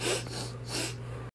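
Two sharp, hard nasal sniffs in quick succession, loud, each a rushing burst of air through the nose, with a steady low hum underneath.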